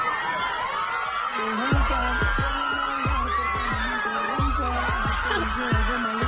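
Hundreds of young fans gathered in the Plaza Botero in Medellín scream and shriek continuously as a singer leaves his house, a dense, high-pitched roar of many voices, with steady low thumps pulsing underneath at a regular beat.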